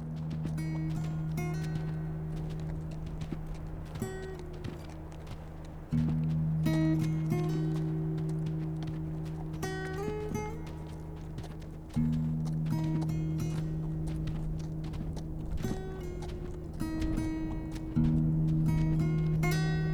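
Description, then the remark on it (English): Horses' hooves clip-clop steadily in a loose, continuous rhythm, heard over a sustained low droning tone that shifts pitch every few seconds. No one speaks. “You think our horses are safe?”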